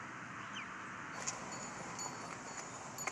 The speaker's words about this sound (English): Oh, that's lovely as well. We're getting a lot of lovely sounds here. Sounds of wind chimes.